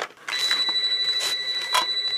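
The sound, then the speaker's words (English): A phone rings with a steady, piercing electronic tone, fairly loud, with brief bursts of buzzing texture woven through the ring. No one speaks. “And you over here just calling my phone randomly.”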